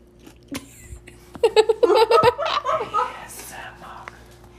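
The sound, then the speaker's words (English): Close-up ASMR chewing by a person, with wet mouth noises and a few sharp crunchy clicks, mixed with muffled, giggly vocal sounds in the middle, then fading back to quieter mouth sounds. “Okay, ASMR. … is chewing.”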